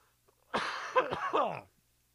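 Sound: lingering cough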